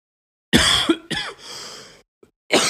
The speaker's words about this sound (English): Sorry, guys. You boys got the cough going. Still went to work today, though.